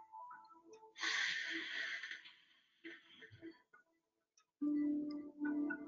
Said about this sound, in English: Start to breathe in slowly through your nose. Pause for a moment. And then exhale through your nose deeply and audibly as if you were trying to fog the glass of a window.